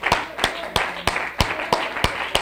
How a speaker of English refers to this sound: If you're thankful for this church, I want you to stand to your feet and give God a thunderous hand clap and praise for your church. Amen.